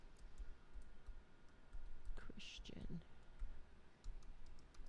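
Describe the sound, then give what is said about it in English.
Quiet, irregular taps on a computer keyboard click away in the background while a voice briefly speaks a word over them. “Should have paid attention in typing.”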